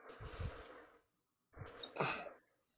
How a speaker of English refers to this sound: Sorry, I'd had to yawn. That was a weird yawn. I had to yawn and grunt a little bit.